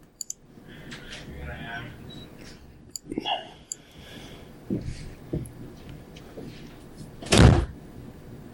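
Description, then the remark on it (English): A door shuts with a single loud thud near the end, preceded by scattered clicks and rustling handling noises, with faint muffled voices in the background. “Yes, I did close the door.”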